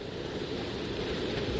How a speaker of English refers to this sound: So we're really starting to see and feel the worst of it. The wind is whipping up. The rain continues to come down in sheets. The county is measuring the wind speed at 41 miles per hour, sustained gusts into the 50s.